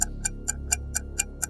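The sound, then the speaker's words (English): A quiz clock ticks quickly and steadily, seven sharp, bright ticks about a quarter-second apart, sitting over a low, steady background hum with no voices. “The clock's gone mad.”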